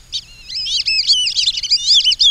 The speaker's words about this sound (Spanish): Unos pijijes alas blancas demuestran que en verdad son patos que saben silbar.